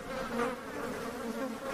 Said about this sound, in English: Where are all those flies coming from? Hey, fellas, leave my friends alone.